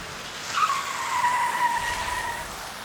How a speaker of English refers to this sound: it was snowing, we slid off the road.